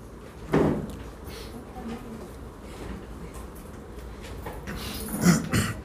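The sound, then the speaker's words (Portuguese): A chair is brought for a man to sit on, with a knock near the start, some shuffling and scraping, and a second clunk toward the end as it is set down on the floor at his side. “Filha, por favor, uma cadeira para o nosso filho”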